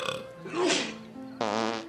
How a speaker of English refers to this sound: This is the third burp snart.